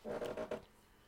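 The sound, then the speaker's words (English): A chair creaks once, a short, croaky groan of about half a second made of a few stuttering pulses, fairly quiet and with no talking, then it falls silent. “That was the chair.”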